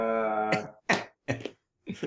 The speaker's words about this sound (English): I'm telling you, there it is, golf clap.